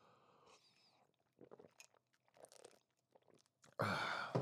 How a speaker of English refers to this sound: Gonna let that sink in while I take a sip out of my Monster Energy drink.